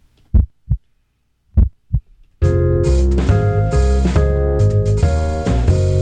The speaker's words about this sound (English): I don't know why I hit the heartbeat all the time. I think it's just, I can't see what the buttons are. I just press them. It works. But I know when I hit the heartbeat, I know where the music button is.